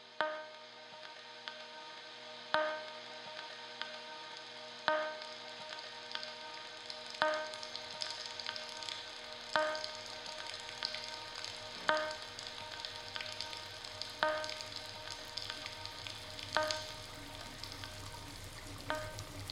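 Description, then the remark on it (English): Running water pours in a steady, bright hiss for the whole stretch, with a sharp tick cutting through roughly every two and a half seconds. No voices are heard. “We should turn off the water.”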